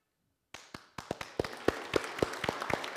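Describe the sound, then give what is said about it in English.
After a brief silence, scattered sharp claps begin and quickly multiply into steady audience applause, the crisp hand-claps growing denser and slightly louder without any voices. “You don't need to applaud.”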